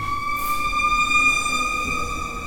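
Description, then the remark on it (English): A fire truck siren passing outside blares, a loud, steady, sustained tone that holds unbroken for a few seconds over a low background rumble, with no one talking. “Turn off the siren. It's not important. How rude of them.”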